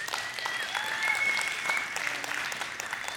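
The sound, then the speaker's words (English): Sustained applause from a sizable audience, a dense, steady wash of clapping hands that holds at an even level for a few seconds, with no talking over it. “And don't applaud, just throw money.”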